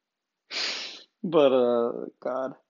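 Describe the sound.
A loud nasal sniff, a half-second rush of air, followed by two short voiced snorting grunts from the same person.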